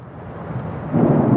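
nature, thunderstorm with heavy rain

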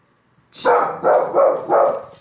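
animal, dog barking

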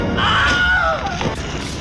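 sound effect, wilhelm scream sound effect

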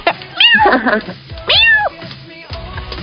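animal, cats meowing

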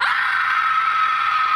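sound effect, person screaming

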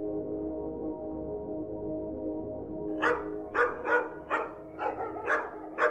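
animal, hunting dogs barking

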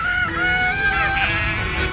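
bird, rooster crowing

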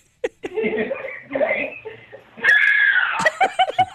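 human body sound, woman screaming

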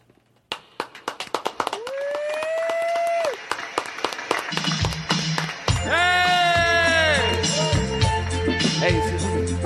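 crowd, audience applauding loudly

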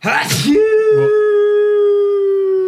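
human body sound, sneeze

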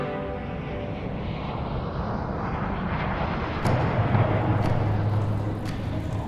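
vehicle, airplane flying

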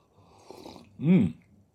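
food or drink, sipping a drink

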